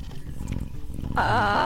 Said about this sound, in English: And as Goro says the name of the panther, Pantera. Pantera. Each one of the ninjas in training can hear very loudly the purring of a cat that is loud as a small gas engine.